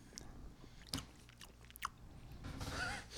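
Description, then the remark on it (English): Wet chewing of slimy, salty canned ham, with soft squishy, smacking mouth sounds and a couple of sharper clicks, continuing steadily for a few seconds with no talking. “Sorry for chewing directly into that.”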